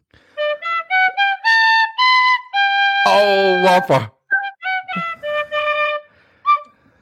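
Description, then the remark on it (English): A tin whistle plays a bright melody of short, separate notes, broken midway by a brief spoken exclamation before the tune resumes and trails off. “Come here and tell you, there isn't a podcast out there that is playing you out with the tin whistle.”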